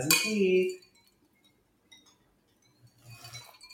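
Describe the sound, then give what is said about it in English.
A bright clink of glasses tapped together in a toast, ringing out briefly, followed by quieter murmuring voices and a faint second chime toward the end. “Cheers. Cheers.”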